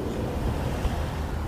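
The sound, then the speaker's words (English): A car drives by, picked up by a microphone and heard through headphones as a deep, steady growl, a thick low-pitched rumble with a hissy wash on top that holds fairly even throughout, with no voices. “And just as I do, a car drives by, which sounds like a big growl in the headphones.”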